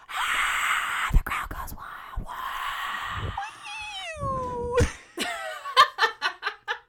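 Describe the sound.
A person lets out loud, drawn-out, sliding yowls in imitation of a feral cat, then breaks into a quick series of short, rhythmic bursts like laughter.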